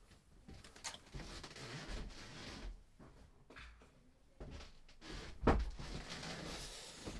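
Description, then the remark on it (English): A door is pushed shut with a single solid thud about two-thirds of the way through, preceded by soft shuffling and handling noises, with no talking. “Shutting the door there.”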